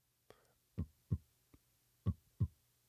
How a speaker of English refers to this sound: The thud, thud the heartbeat makes is the sound made by the 4 valves of the heart opening and closing.